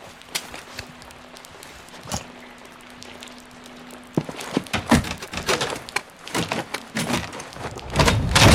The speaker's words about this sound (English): Off a fan blade. Tie off the blade with the rope and pry open a door.